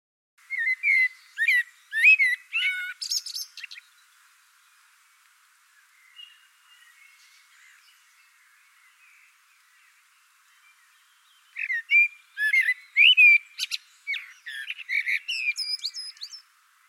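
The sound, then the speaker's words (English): A blackbird sings two phrases separated by a long pause, each starting with low fluting whistles and ending in higher, twittering notes. It sounds clear and unaccompanied by any voices. “You can hear these two parts here, in this extract of a bird's song.”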